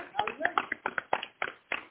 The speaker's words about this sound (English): Come on and clap that hand for Jesus.